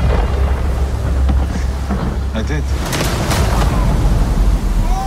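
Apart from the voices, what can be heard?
thunderstorm with rolling thunder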